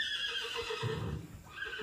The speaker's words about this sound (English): I'm so sorry about the horse. I'm at a ranch right now and I'm hanging out with the horses, and I thought this would be fun to record right now.